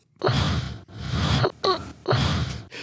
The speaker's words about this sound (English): What was that breathing? It was you. That was something played in reverse.